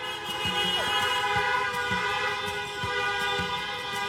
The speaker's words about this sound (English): A lot of honking, as you've heard, all across the city for the past 2 hours since the race was called in favor of Biden-Harris.